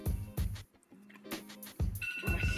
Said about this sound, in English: Dang, that's mine. See, that's on my list. That's what that was. So we're going to go ahead and keep that up in there. That's for my list. Yep, that was my alarm.